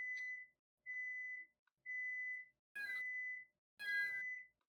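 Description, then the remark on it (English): A stove timer, set while food is cooking, beeps five times in a steady, evenly spaced rhythm, each tone clear and high-pitched, with a burst of rustling noise over the last two beeps. “Okay, I'm gonna go turn the stove off for your food real quick, okay, but we're gonna say that beeping was in canon.”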